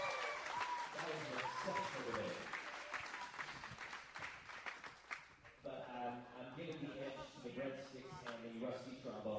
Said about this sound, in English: We can have like a round of applause here.